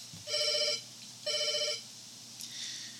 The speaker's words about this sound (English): Then Larry's phone starts ringing.